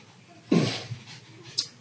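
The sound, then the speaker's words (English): A dog whimpers and pants, a breathy burst followed by a couple of softer, shorter huffs, with no one talking over it. “Hold on, dog. I'll talk in a minute.”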